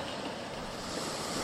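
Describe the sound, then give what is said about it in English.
Water laps gently and continuously against a sandy beach in the darkness, a soft, steady wash of surf with a faint breezy hiss, fairly quiet and with no voices. “The lapping of water continues, and you look down below all of you and you see that you're on a sandy beach somewhere in the darkness.”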